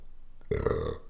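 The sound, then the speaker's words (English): A single loud burp erupts after a brief quiet moment, low and throaty with a rumbling, drawn-out tone lasting about half a second. “Excuse me. You are extremely burp. Yeah, I'm gassy today.”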